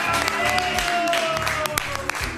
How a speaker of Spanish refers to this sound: este aplauso no es para el campeón, es para Leticia